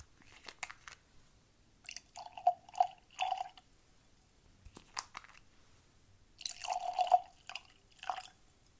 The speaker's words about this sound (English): Glasses and tasting cards are ready. Let's get these poured and jump right in.